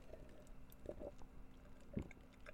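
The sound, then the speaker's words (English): A few soft slurping sips of water with brief gulps between them, quiet and unhurried, with no one talking. “Just take a sip of my water.”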